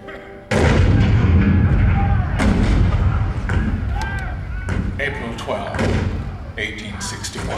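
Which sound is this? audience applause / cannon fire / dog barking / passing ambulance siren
cannon fire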